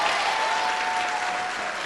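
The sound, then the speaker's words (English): A crowd applauds the speaker's wife steadily, a dense wash of many hands clapping at a constant, loud level for the whole stretch with no voices standing out. “She is an amazing woman, and I definitely, could you just give her a round of applause, because she's amazing.”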